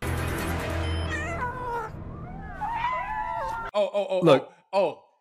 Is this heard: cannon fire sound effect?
no